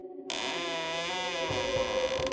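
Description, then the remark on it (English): A slow, drawn-out creak as the door to Vorn's room is opened starts abruptly and stretches for about two seconds, a strained, groaning tone with steady wavering pitch, fairly loud. “He first came upon Vorn's room and creaked open the door.”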